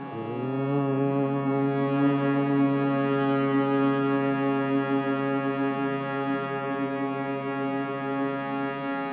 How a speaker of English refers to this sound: So we're going to start just by hearing one note. The chant moves up one note at a time, but first hearing this note, starting note. Take a big breath in and then just hum the note.